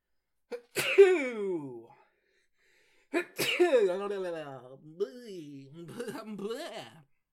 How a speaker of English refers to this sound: That's how I sneeze. Don't judge me. Don't look at me.